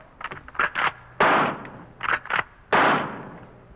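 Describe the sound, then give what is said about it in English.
Rifle fire into a silent jungle at night in two rounds: a quick cluster of sharp cracks followed by a louder, longer blast with a ringing tail, then the pattern repeats. No voices. “It's not afraid of rifle fire.”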